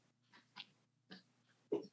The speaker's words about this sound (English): Sorry, excuse me. I keep having a coughing attack.